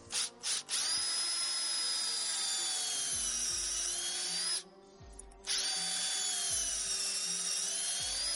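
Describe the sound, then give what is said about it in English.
A power drill whines steadily as it bores about 2 inches into a tree trunk at a slight upward angle to tap sap, running loud for several seconds, pausing briefly, then spinning up again for another sustained burst. “Drill on a little bit of an upward angle.”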